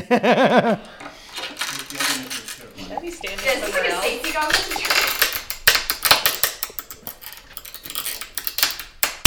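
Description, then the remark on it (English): A brief voice, then a glass pane shatters inside a burlap bag, dissolving into a dense, crackling cascade of tiny tinkling clicks and pops that keeps fizzing for several seconds, slightly muffled by the bag. “It will shatter into a million pieces.”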